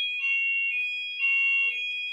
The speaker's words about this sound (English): Alarm again, guys.